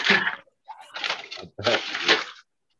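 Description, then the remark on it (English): Loud clattering and banging as objects are knocked and slammed around, coming in three rough bursts with short gaps between them. “Oh, you're all slamming shit around.”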